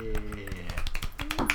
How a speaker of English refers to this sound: Yeah. I can't snap. Two snaps. Oh yeah. I used two fingers.